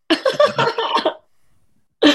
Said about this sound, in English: Good burp for me. That was good.